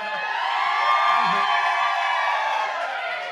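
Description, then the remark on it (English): A large live audience in Providence, Rhode Island cheers and whoops loudly and steadily for a few seconds, a dense roar of many voices with high yells rising out of it, with no clear speech. “Anytime I'm feeling nervous on stage, I'll go, Providence, Rhode Island, make some noise.”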